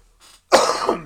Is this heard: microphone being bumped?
no